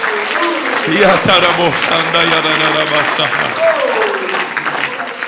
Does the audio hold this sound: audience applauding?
yes